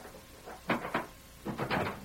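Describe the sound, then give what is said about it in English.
The wooden door of a small cabin in the wild, rough country north of Rimrock opening, with four short, hollow bursts of rattle and clatter in two quick pairs, moderately loud, with no one talking. “Let us in. Close the door.”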